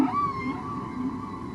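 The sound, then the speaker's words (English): A whale song heard underwater: a sustained, gently wavering moan with a high tonal overtone, steady and fairly loud against a murky background hiss, with no talking. “And National Geographic sent it out in their magazine and really opened people's imaginations to the underwater sounds of the oceans.”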